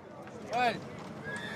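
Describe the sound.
A single horse whinny rises and falls in the middle, loud and fairly close, over a steady outdoor crowd murmur with faint hoof clatter and distant voices.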